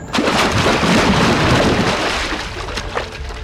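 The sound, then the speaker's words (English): A car plunges into a lake with a loud, churning rush of splashing and bubbling that holds steady for a couple of seconds, then gradually eases off. No voices. “Corkscrewing straight down, I finally caught sight of the water below as Carface hit the lights, slowing our descent and dampening the sound of us plunging below the surface.”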